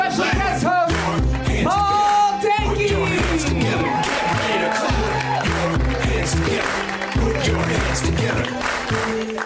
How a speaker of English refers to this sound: What's up, everybody? Thanks for coming out to UCB. Put your hands together. Put your hands together. Please clap yourself on your feet. Put your hands together.